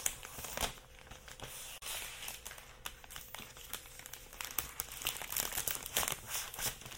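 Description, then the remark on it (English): Crinkling and tearing of the packaging paper around a new Mac laptop as a pull tab is drawn along during unboxing, with repeated sharp rips and rustles over about seven seconds, no voices. “I'm going to pull the tab on this part on the laptop. Sounds like it's ripping, but it's actually what it's supposed to do.”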